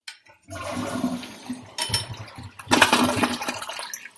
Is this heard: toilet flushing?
yes